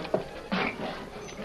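A cabin door creaks open with a low scraping sound as a man hurries in, followed by a few quick, uneven footsteps on a wooden floor and a sharp knock-like thud at the end. The cabin is just south of the Canadian border.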